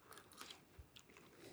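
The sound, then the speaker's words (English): Crunching as someone bites and chews a crisp french fry, with a few sharp, uneven crunches over a second and a half and no talking. “Okay, I'm going to try a fry. Yeah, it's crunchy.”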